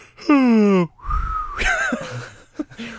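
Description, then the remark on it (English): A voice mimics a yawn: a loud, drawn-out harmonic tone sliding downward, then a lower stretched groan with a rising strained sound, ending in soft breathy murmurs. “If you are tired and you just yawned, it would just, you go”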